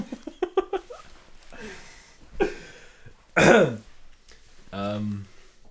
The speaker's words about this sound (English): Oh yes, yeah, start it with a cough.